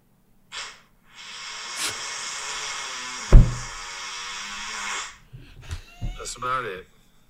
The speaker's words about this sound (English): That was a comically loud fart. What even did I hear that? It's like that was real. A comically loud. I mean, there's a video. It's real. Yeah, that was a leaky one.